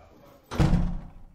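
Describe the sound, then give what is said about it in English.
A heavy jail door at a police station is pushed open by the jailer with a single deep, solid clunk that rings out briefly, fairly loud, then fades into a low rumble. No one speaks. “This way, Mrs. said the jailer, pushing open the door.”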